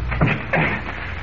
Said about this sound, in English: All right, I'll swing the door open.